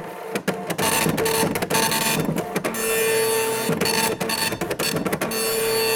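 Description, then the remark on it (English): A dot matrix printer rattles steadily through lines of print, its buzzing, grinding chatter loud, broken by brief pauses and sharp clicks as the carriage returns. “Another sound is the sound of a dot matrix printer.”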